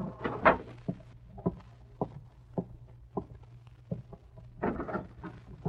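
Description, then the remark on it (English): An unlocked door is opened: a sharp latch clack followed by a series of soft bumps and clicks spread over several seconds, with a low steady hum underneath and no talking. “The door's unlocked.”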